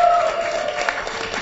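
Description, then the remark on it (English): Audience applause for a panelist's correct answer on a quiz show, a steady wash of clapping held at an even level for a moment, with a thin whistle or cheer riding briefly over the start. “Give him some applause for that.”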